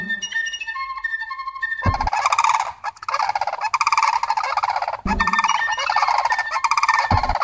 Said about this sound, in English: And the flute sounds kind of like a crane to me, which sometimes symbolizes resurrection. Here's the flute part and then a crane call.